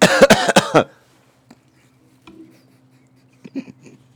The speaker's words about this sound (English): I know some of y'all like to play a shot game with how much fucking coughs I do, so.